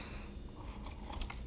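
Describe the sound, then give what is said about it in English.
Crunching as someone bites and chews a frozen treat, a steady run of crisp, crackly chomps over about a second and a half, fairly quiet and with no talking. “It's frozen.”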